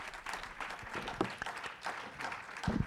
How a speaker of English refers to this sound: Hand clap to the Lord. He's worthy of it, isn't he?